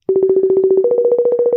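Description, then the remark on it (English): An Instagram outgoing call ringing tone, for a call placed to someone in New Mexico, plays on its own, a loud, rapidly pulsing electronic tone that holds a steady pitch and steps slightly higher halfway through. “Ooh, we're calling on Instagram, so it sounds really fun.”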